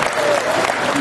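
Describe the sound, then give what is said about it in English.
An audience hooting and hollering amid dense, steady applause, a loud, continuous wash of clapping and cheering voices with a few brief higher-pitched calls rising above the noise. “Firstly, there's a lot of hooting and hollering, but one thing that I didn't notice in the hooting and hollering was ask that man to answer the question.”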